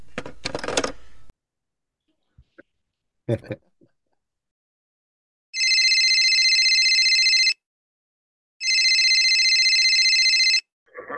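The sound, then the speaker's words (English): Two loud, steady electronic answering machine tones, each lasting about two seconds with a short gap between, preceded by a few clicks and handling noises. No one speaks. “So with the sound of the tone, please hang up.”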